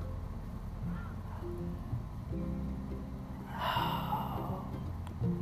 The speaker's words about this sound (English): Just breathe. Pay attention to your breathing, going in through your nose and out through your mouth.